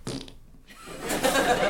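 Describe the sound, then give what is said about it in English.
A brief burst, then a pause, then a long buzzy, sputtering raspberry blown with the mouth to imitate a fart, loud for about a second with no talking. “No, he didn't write the fart noise.”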